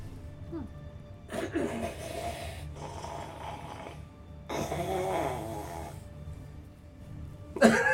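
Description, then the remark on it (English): A voice imitates deep, rhythmic snoring: two long, rasping inhales separated by quieter exhales, fairly loud, with a brief sharp burst at the very end. “Again, this would be like an echo that would be coming out from the tunneling for where you guys are, but you would hear a deep, rhythmic snoring.”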